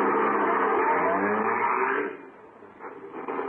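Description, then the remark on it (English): A car engine, started with the starter, roars and revs loudly for a couple of seconds, then drops off to a quieter, uneven rumble, with no voices. “The car might be hard to start again some morning.”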